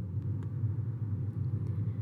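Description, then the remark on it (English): A steady, low rumble of cars rolling along a highway, dense and continuous with a few faint higher whooshes of passing vehicles, no voices. “I know that sometimes sound of the highway or cars relaxes people.”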